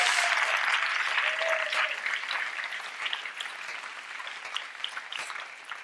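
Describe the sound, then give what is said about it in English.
Sustained audience applause from a sizable crowd, a dense wash of clapping that starts strong and gradually tapers slightly over several seconds, with no voices heard. “Big round of applause for the wonder that is”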